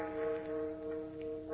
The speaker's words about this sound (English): Standing at the window, peering down into the darkened street, he stiffens as the bell in the Metropolis Insurance Building strikes the hour.